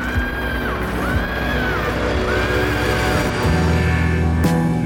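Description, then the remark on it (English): A drawn-out, wavering scream rises and falls over dense, loud music in a song recording, repeating in a few long swoops before the backing thickens with low sustained tones near the end. “You're talking about with the scream into the thing?”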